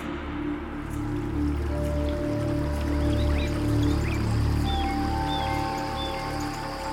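Steady rushing water with a rain-like patter and scattered drips at the edge of a great waterfall, continuous throughout, with a few faint high chirps overhead and no voices.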